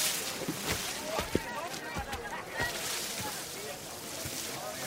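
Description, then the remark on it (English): Boats being poled through water by men standing in them, using long poles to balance and push the boats forward: a steady wash of sloshing and splashing with occasional soft knocks and thumps, with faint indistinct voices in the background. “They're standing and using long poles to balance and to push their boats forward.”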